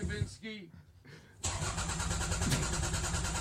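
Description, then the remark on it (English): A car engine cranks loudly as a man tries to get the car to start. It has a steady, rapid chugging rhythm that starts abruptly after a brief stretch of voice, then keeps churning without catching. “I mean, he's still starting the car, but.”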